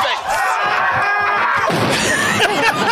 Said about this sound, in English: And Marlon, this to me, in all of Marlon Wayans' screaming career, this right here is the best, to me, is the best scream he's ever done.